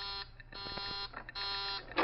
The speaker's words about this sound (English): Just a moment. Stand right here, please. That's the warning buzzer. It means that someone's coming out. We'll have to wait here a second.